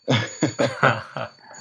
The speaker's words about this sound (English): My clock is about to ring.